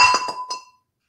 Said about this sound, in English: So, now you know why the rum's gone. Have one sip and I'm knocking stuff over already.